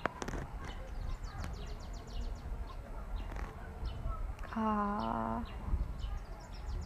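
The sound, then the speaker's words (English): Outdoor birds chirp in quick repeated bursts against a steady rush of wind, with one louder, drawn-out fowl-like call rising near the end. “I just want you guys to hear the birds, the wind, the thunder, the breeze.”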